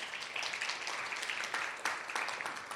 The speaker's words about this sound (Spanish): Un aplauso para nuestro hermano